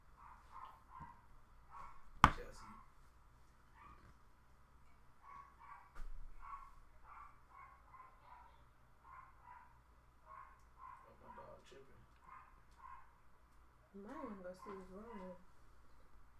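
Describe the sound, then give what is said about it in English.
A dog gives a run of short, repeated yips and whimpers over a low background hum, with one sharp bark early on and a few whining cries near the end. “You need to go feed your dog.”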